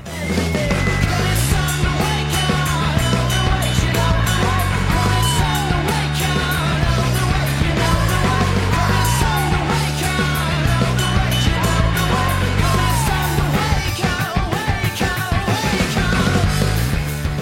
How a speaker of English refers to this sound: I like it. The little screaming in the back is pretty tight. Yeah. It's neat. I like the ride. Bing, bing, bing, bing. That little bell hit that's happening the whole time.